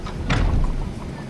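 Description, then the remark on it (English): A single heavy clunk of an aircraft tow bar disconnecting from the pushback tractor after the airplane is pushed away from the gate, a dull thud with a brief rattle, set against a steady low rumble that continues afterward. “You can hear that clunky noise of disconnecting the tow bar, as well as feel it.”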